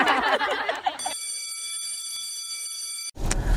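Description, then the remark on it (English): A bell rings in one steady, sustained electronic tone for about two seconds, loud and clear on its own, after a burst of busy noise, then cuts off abruptly. “Well, that's the bell.”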